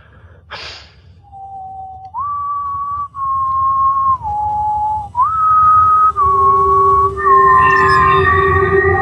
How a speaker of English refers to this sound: I'm guessing that's part of the activation sequence. Now we know what the whistle's for. So each tone is going to light up one of the crystals.